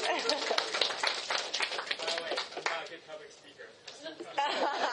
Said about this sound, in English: That's an awesome story. Clap it up for him.